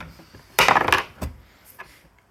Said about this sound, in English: Dude, I'm rolling this dice. See, I realized I left one of my dice somewhere else, and that one usually rolls consistently high.